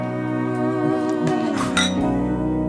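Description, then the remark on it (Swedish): Glasses clink together in a toast, a bright, ringing chime, with a sustained tonal hum running underneath the whole time. “Skål för de kommande åren.”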